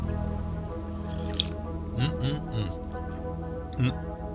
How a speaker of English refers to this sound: And, you know, one thing I do need more than anything else right now is a sip of my coffee. So I'm going to go ahead and take one. Hang on.